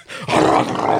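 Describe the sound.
A voice imitates a car with its muffler taken out being started up: a loud, raspy, rumbling growl that starts short, then swells into a sustained rough roar lasting about a second.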